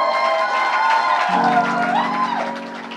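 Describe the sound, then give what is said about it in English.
A church crowd cheers and claps continuously in celebration, a dense wash of applause with voices whooping and shouting over it, loud throughout and easing slightly toward the end. “That's the hired crowd at the back.”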